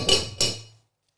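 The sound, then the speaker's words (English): A teapot lid being lifted off: two sharp ceramic clinks a third of a second apart, each with a bright ringing tone that fades away quickly. No voices. “Without further ado, let's open up this teapot and find out what our first question is.”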